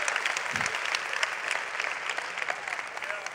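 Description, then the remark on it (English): A crowd claps steadily to give God a round of applause for liberation, a dense patter of many hands sustained throughout at an even, fairly loud level, with no one speaking over it. “Come on, give God a round of applause for the liberation.”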